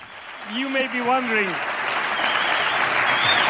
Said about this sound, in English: You may be wondering why I'm clapping.